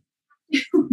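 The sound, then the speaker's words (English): A cat lets out a short protest as its owner puts it out of the room: a breathy hiss-like burst followed by two low, grumbling cries, all within about half a second. “I have to kick my cat out.”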